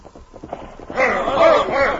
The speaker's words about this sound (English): Look, there comes three men on horses.